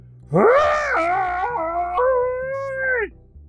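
A single loud, drawn-out monster scream from the trunk-nosed villain Man Elephant after being struck on the nose, wailing and howl-like, rising sharply then holding a wavering pitch for nearly three seconds before cutting off, alone with no talking.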